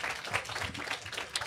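A crowd bursts into steady applause, dense overlapping claps filling the room at a fairly close, lively level, with no one speaking over it.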